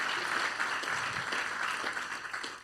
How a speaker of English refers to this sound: And so let's give them another round of applause. We're so thankful for you guys.